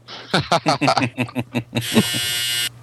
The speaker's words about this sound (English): Whose dryer just went off? That was someone's vibrator, I think.